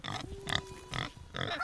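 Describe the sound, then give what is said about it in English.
An eager pig on a 10-meter leash on a steep hillside farm grunts in several short, snorting bursts as it comes up to greet visitors, with a faint steady tone running underneath; no one speaks. “A very eager pig on a 10-meter leash comes up to greet us.”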